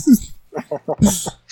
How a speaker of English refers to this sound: Bless you